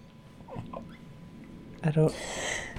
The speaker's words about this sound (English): I don't know if we just woke her up, but that was hilarious, hearing the dog snore.